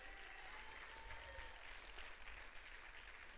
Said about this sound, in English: Come on and clap. That's a good place to clap right there. Come on and give them a good clap.